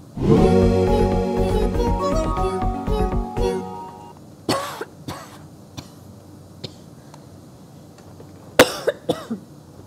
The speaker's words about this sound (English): Pardon me. A little under the weather. Well, that was a coughing companion to the show.